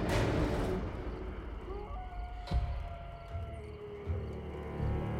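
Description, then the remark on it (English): A thin, drawn-out howl outside wavers at a steady mid pitch for a couple of seconds over a constant low rushing roar, with a single dull thump partway through. No one speaks. “A howling sound started outside.”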